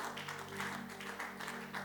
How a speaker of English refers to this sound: Oh, you can clap. I didn't like the short one.